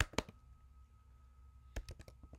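Soft clicking of keys on a computer keyboard: a few quick taps, a quiet pause, then another short run of rapid keystrokes, faint against a low steady hum with no talking.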